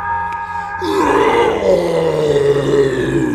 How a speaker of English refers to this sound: From the far side of the warehouse, I heard a scream, followed by the groans and yell of the massive demon of a man I had run into the other times.